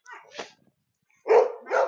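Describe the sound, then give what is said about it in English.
A small, pug-looking dog barks sharply twice in quick succession after a few fainter yips, the barks fairly loud with a brief pause before them. “There is a funny, you can hear it, but there's a real little bark of that. I think it's a little, whatever, pug looking kind of a small dog that's just like contributing to the barking orchestra.”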